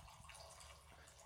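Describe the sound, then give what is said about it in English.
A steady stream of liquid is poured from height into a glass, a continuous hissy, bubbling pour for about a second with no talking. “I am doing a high pour, just so everyone knows.”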